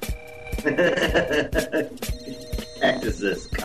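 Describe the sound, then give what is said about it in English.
A telephone bell rings repeatedly in short bursts, loud, with voices talking over and between the rings. “Telephone.”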